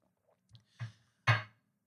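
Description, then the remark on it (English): Someone sips coffee: a few soft mouth clicks, then a louder, breathy slurp that fades within a fraction of a second. No one speaks. “Let me sip some coffee.”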